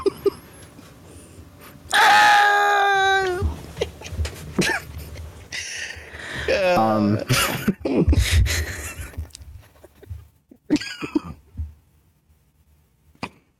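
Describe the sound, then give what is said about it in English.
Lego Yoda's video game death scream: a loud, strained high-pitched cry that wavers downward, followed by a few gasping, sputtering vocal bursts and a final squeaky yelp, with no other talk. “And this is where I make my exit and play the Lego Yoda death sound.”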